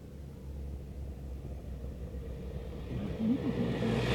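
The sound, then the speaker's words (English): Photographers' motorbikes and team cars carrying spare bikes rumble past spectators at the roadside of a bicycle race in a steady low drone, an engine note rising and wavering louder toward the end as vehicles go by. “So the various photographers on the back of motorbikes are coming past us, and team cars with spare bikes.”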